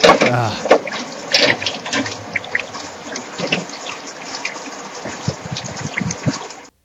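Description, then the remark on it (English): Steady rain falls in a continuous, dense hiss, with scattered sharper patters and drips popping out of the wash for the full length. “It's raining.”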